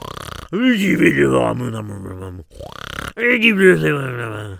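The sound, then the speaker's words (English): A man's voice imitates loud snoring of a man sitting in a chair outside a boarded-up building: two long, drawn-out rumbling groans with wavering pitch, separated by a brief pause. “There's a guy sitting out there in a chair. He's snoring away.”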